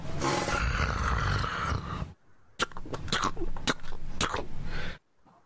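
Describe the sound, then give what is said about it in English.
A werewolf's loud, drawn-out beastly roar fills the first two seconds, then after a brief pause comes a series of harsh, snarling growls in short bursts, aggressive, with no talking. “werewolves and growls and roars and puts up a racket, and you hear.”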